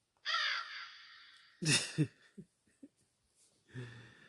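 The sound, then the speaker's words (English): A loud, harsh crow-like caw, likely a person's voice imitating it, stretches out for over a second, then two shorter rasping caws follow, with a few faint clicks and breaths trailing after. “Yeah, do it one more time for the birds.”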